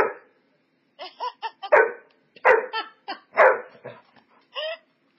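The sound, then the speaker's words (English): A dog named Jaina barks repeatedly, an irregular string of sharp, loud barks mixed with shorter, higher yips, with no one talking. “The dog agrees, too.”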